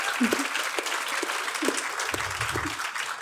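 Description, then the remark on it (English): A crowd applauds steadily, a dense wash of many hands clapping at once, with faint murmurs of voices underneath the continuous patter. “Actually, while you're clapping, can we just clap for Melissa Lukashenko?”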